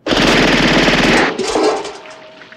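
A rapid burst of suppressed automatic gunfire from a silenced 9mm Ingram submachine gun, 32 muffled shots in about a second and a half, fired into a can filled with water, followed by splashing and a fading ring.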